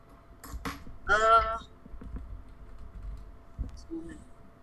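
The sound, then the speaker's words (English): Quiet typing on a computer keyboard as a chat message is typed during a Zoom meeting: a few quick, scattered key clicks in short bursts, with a brief louder burst of sound near the start and a faint background hum. “So yeah, you're typing to me. Oh. As well at this moment.”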